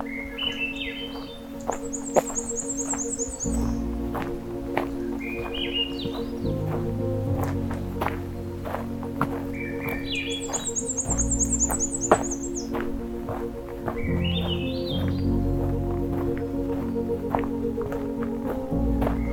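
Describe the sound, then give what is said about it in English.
Warbler songs in a jack pine alvar forest repeat every several seconds, each a short rising series of clear notes ending in a high, thin buzzy trill, with scattered chips over a steady low background hum. “As I continue my hike through the jackpine alvar, we'll hear more of this species, black-throated blue warbler, myrtle warblers, and more.”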